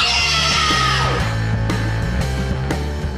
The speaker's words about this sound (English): Maybe that's why screaming feels so fucking good.